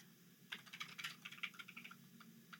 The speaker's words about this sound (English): Well, I have to respond to this message. What are you saying? What are you typing? Tell me what you're typing.